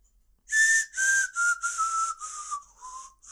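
A breathy, hissing whistle forced through the teeth carries a slow melody in several connected phrases, the pitch drifting gradually downward. It is close and fairly loud, with no voices.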